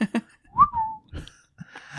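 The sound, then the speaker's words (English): A man whistles a single short note that slides down in pitch, clear, with brief bursts of other sounds around it but no talking. “I think … whistles.”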